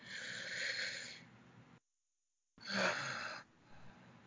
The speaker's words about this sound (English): Shall we breathe now? Let's breathe, right? On the count of 3. 1, two, three.